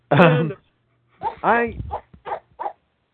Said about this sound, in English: It's Spitwall's dog.